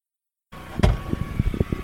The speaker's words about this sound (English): Let's see if your car starts. Car starts. It's just real gutless, and we got to climb up a big fucking mountain. I'd expect more from a Nissan Sentra. She's an old girl.